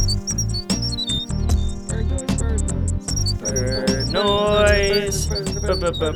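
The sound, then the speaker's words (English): Quick, high bird-like chirps repeat over an upbeat musical theme with steady drums and bass, the tweets staying bright and prominent throughout. “Bird noise.”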